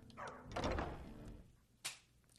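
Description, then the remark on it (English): A video game door, in a game played on an Xbox, creaks and grinds open with a heavy rumbling whoosh, followed a moment later by a short, sharp thunk as it settles, fairly loud with no talking. “You just heard that open the door, and I was already out.”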